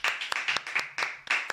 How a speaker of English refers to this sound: Praise the Lord Jesus. Hallelujah. Someone give the Lord a clap of hands.